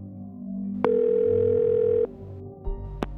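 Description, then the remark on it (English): A telephone call being placed to a number that kept appearing on a daughter's phone bill, reaching the office of Congressman Gary Condit: a click, then a steady electronic ringing tone that holds for about a second before cutting off, followed by a few more handset clicks. No one speaks. “So, the Levys picked up the phone and dialed.”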